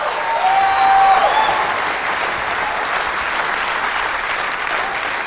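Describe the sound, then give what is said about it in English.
An audience applauds steadily in praise to the Lord for about five seconds, a dense wash of clapping with a brief high whistle or whoop near the start, loud and sustained without speech. “Give the Lord a praise.”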